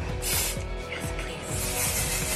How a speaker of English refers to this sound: The final touch. I want to lock it in. Spray powder.